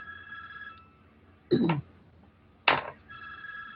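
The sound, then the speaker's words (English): A telephone rings with a steady electronic trill, stopping for a pause and then starting again. Two sharp, loud knocks or thumps land in the gap between rings, and no one speaks. “No, I'm not going to get that phone.”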